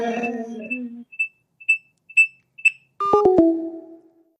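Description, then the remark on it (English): Electronic audio feedback squeals from a phone speaker: a harmonic whine, then a run of short high beeps about half a second apart, ending in sharp clicks and a fading buzzy tone. No talking. “Can I get a lot of feedback while I'm doing this?”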